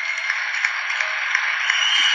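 A large audience applauding, a dense, steady wash of clapping that holds at an even loudness throughout, with slight regular swells every third of a second or so and no voices.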